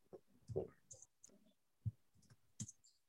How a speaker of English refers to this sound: I think this is what it's called. You can hear me typing.